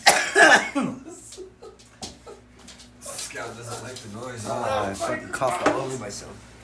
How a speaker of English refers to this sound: Oh, I fucking cough all over myself.